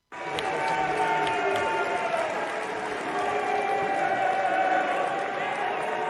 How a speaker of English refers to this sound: Mitt Romney went up to give a speech and he got booed. He got completely booed. So as we wait for Joe to show up, let's play this cut three of Romney getting booed.